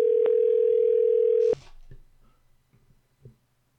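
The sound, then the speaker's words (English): A loud, steady electronic phone tone holds for about a second and a half, then cuts off abruptly, leaving faint clicks and low background noise. “Can you all hear the ring?”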